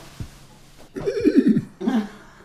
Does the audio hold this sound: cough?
no